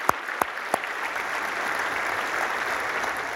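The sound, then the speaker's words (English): A church audience applauds steadily, a dense wash of many hands clapping at moderate volume, with a few sharper individual claps standing out near the start, in response to a Forbes magazine quote about mothers' responsibilities. “I thought that deserved a round of applause.”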